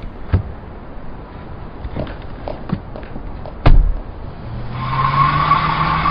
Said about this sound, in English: Watch where you're going, asshole! Car's clipping that close to the curb are bound to kill somebody. Man, they came out of nowhere.